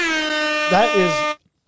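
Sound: air horn sound effect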